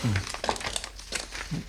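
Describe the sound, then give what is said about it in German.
Waste-disposal papers on a desk being shuffled and handled, a quick series of dry rustles and crinkles with a few soft thumps, with no talking. “Da liegen Papiere auf dem Schreibtisch. Entsorgungspapiere.”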